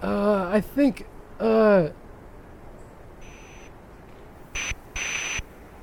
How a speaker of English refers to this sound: Well, we're calling up... It's ringing. Shit. Well, why? Go for it. It's ringing, though.